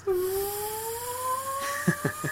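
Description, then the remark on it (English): A voice recreates the music played whenever somebody dies, humming a steady, slowly rising whine like a jet engine spooling up for takeoff, ending in a few short, choppy bursts. “The music that they have whenever somebody dies, it sounds like an airplane taking off.”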